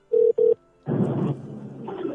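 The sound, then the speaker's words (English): Two quick buzzing ring pulses of a phone call connecting, clear, then a short pause before a longer burst of muffled, noisy line sound; the call is to the caller's wife, who is on a bus on her way home. “So let's see if I can get her on the phone.”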